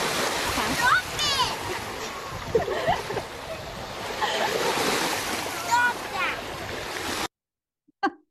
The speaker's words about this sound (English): I hope that you could hear. She was being pounded by the ocean waves and she was saying, stop that, stop that, right?